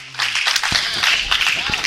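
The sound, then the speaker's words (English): A church audience claps hands in praise to God in a dense, steady wash of overlapping claps, loud and continuous, with a few sharper individual claps standing out and no clear rhythm. “Go ahead and give God a hand clap of praise up in here.”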